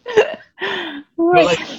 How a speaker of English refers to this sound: See, you're burping. I did.